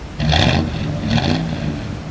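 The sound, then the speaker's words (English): Rover engines rev loudly nearby in two surging bursts, a low mechanical rumble rising and falling with a harsh whine on top, no voices. “The rovers got louder than ever, so close she could smell their exhaust.”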